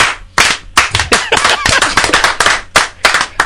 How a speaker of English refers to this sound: The slow clap comes out.